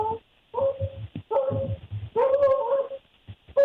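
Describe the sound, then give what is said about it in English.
A dog barks and yelps outside a closed window in a series of drawn-out, somewhat whiny bursts, muffled and thin, with short pauses between them. “There's a dog barking outside my window.”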